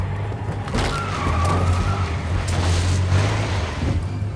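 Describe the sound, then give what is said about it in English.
A truck engine roars under heavy strain, a steady low growl with rumbling and rattling as the vehicle drives hard and fast, loud throughout with no voices. “The truck can't take much more, man.”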